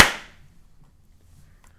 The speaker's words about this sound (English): Do you want to clap? Yeah, let's do it. All right, 3, 2, 1.